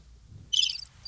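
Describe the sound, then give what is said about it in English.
Crickets chirp in a short, high, trilling burst, followed by a brief second trill, over a quiet low background hum with no voices. “Nothing. Crickets.”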